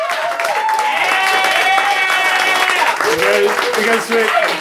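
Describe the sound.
A crowd at the year-anniversary Your Story show claps steadily and loudly for a host for a few seconds. Several voices cheer and whoop over the dense patter of hands, with a pitched shout rising near the end.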